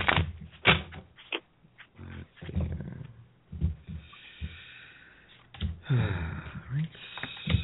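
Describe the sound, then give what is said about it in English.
A deck of tarot cards is shuffled, with bursts of papery flicking and riffling, brief pauses between, and a longer fluttering riffle near the end. No one speaks. “So, sorry, shuffling.”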